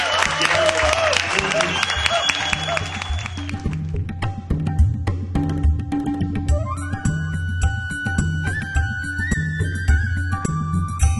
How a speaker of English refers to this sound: And if we could, let's wrap it up with a closing round of applause for the start of our show.